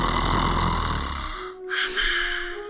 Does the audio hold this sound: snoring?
yes